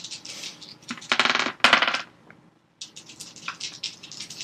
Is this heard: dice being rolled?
yes